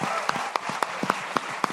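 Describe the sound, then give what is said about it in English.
An audience claps and applauds for Rob Hubel, with a dense wash of crowd clapping and sharper, evenly spaced claps standing out in a steady rhythm, fairly loud and sustained throughout. “Would you clap for Rob Hubel?”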